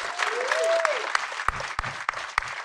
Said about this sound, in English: Yeah, round of applause for them.